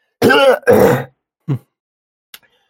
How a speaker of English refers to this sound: I was just clearing my throat there. No ASMR. I'm kidding.